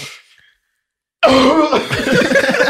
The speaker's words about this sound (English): Yo, you know those coughs that just take over your body, nigga? You can't fucking not put your tongue up. That's like a worst cough, bro.